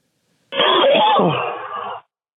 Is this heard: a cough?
yes